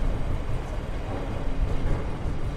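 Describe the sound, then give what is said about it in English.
A steady, rumbling roar of a train running along a railway, heard over a wall, heavy in the low end and holding at an even loudness throughout without any voices. “Over the wall, you can immediately see that we have some transport going on. This is in fact a railway.”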